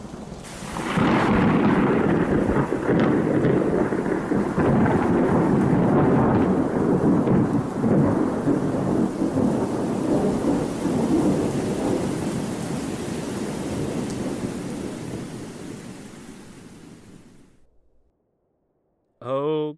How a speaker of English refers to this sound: Okay, that was weird. I've never seen a storm just stop like that.